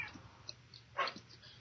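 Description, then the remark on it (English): A cat in a Halloween movie lets out one short, faint meow amid quiet, with soft background noise around it. “There's already a cat.”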